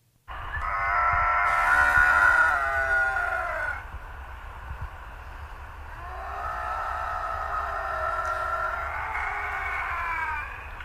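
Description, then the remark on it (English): Two bobcats growling and fighting, with two long, loud yowling screams, each a few seconds, rising and wavering in pitch over a low rumble, with no talking. “Yeah, we have the bobcat growl.”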